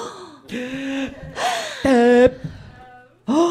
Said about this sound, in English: Gasp. Oh. Oh. Oh.